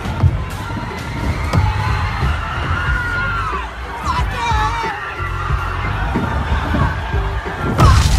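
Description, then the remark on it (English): An explosion sound effect: a loud, deep rumbling roar that fills the whole stretch, with a few sharp bangs punching through the dense, chaotic noise. “Nice to see the explosion clip is back for this made-up story.”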